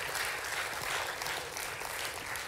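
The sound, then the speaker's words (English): An audience claps hands as a signal to God in a dense, steady wash of overlapping claps, sustained and even in loudness with no distinct individual beats and no voices. “If that sounds like you, go ahead and clap your hands and signal it to God.”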